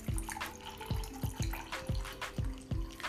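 Tea is poured from a spout into a cup after its first steeping, a steady liquid stream broken by rhythmic gurgling splashes and ringing tones, with no talking.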